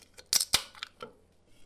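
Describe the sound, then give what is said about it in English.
Two sharp metallic pops as cans of Budweiser beer are opened to be poured into a commercial mixer for making beer cheese, one right after the other, followed by a few softer clicks and a faint hiss, with no talking. “HR pops the lids on each can of Budweiser beer and pours it into the mixer.”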